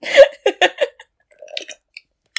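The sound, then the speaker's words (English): A wet slurping sip from a drink: a few quick sucking bursts, then softer mouth clicks and a faint swallow, with no talking. “Oh, sorry. A little slurp there.”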